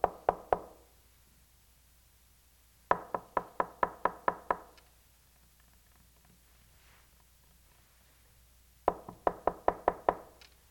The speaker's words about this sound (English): It's almost like when you knock on a door and you hear people rushing around